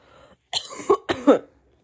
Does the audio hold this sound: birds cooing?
no